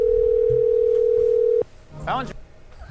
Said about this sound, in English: He has a history of not answering, but phone's ringing, dude.